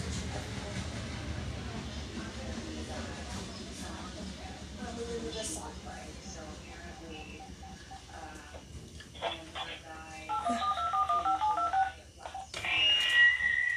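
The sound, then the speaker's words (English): A phone being handled and tapped as someone switches to a different phone because the first is dying, with a short run of electronic keypad-style beeps near the end, over a steady rumbling, noisy background. “Anyway, guys, I gotta switch to a different phone. So, because this phone's dying.”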